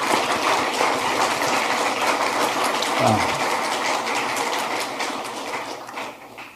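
A crowd claps steadily in a brief round of applause for the staff who put the event together in Madison, Wisconsin, a dense patter of many hands that holds an even level for several seconds before thinning out toward the end.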